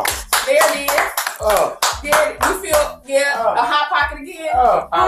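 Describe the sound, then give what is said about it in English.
A short burst of clapping mixed with loud, lively voices and whoops, steady for about five seconds with a few sharp, irregular claps standing out. “Give us some applause, y'all.”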